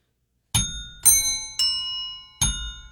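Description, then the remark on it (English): Bells ring out in four separate strikes at uneven intervals, each one bright, with shimmering overtones that hang and slowly fade before the next hit. No one speaks. “So let's tune up our silver bells.”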